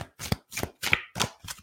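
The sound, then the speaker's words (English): A deck of oracle cards being shuffled during a card reading in several quick bursts, each a crisp riffling flutter with a papery snap, separated by brief pauses. No voices. “Just do a few more shuffles here.”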